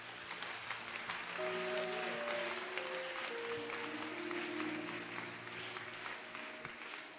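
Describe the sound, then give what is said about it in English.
An audience stands and claps hands in a steady, dense wash of applause that stays loud throughout, with faint sustained organ or keyboard tones underneath and no speech. “Stand to your feet, clap your hands.”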